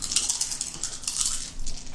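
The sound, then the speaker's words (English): Difficulty dice rattle and clatter across a hard tabletop in a quick flurry of sharp, bright clicks lasting about two seconds, fairly quiet, with no voices. “Rolling difficulty dice.”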